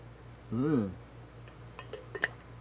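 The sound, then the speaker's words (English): A brief voiced swallowing sound of a sip of ice water is followed by a few light, sharp clinks of ice shifting against the glass. A low, steady hum runs underneath. “I'm going to have a sip of delicious ice water.”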